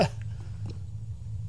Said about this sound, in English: Burp.